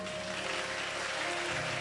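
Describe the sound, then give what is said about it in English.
A church audience claps steadily, a dense, continuous patter of many hands with no pauses, mixed with a faint sustained musical tone underneath. “Come. Clap your hands for them now.”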